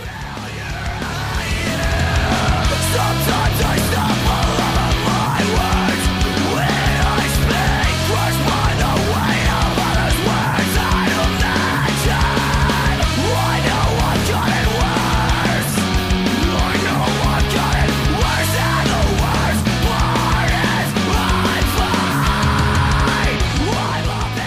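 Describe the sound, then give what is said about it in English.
A loud, dense metalcore track plays throughout, with heavy distorted guitars, squealing pinch harmonics, pounding drums and harsh screamed vocals driving a steady, aggressive verse. “And like the guitar like in the background is like, you got like, it's like, you know, kind of has that pinch going and he's like screaming.”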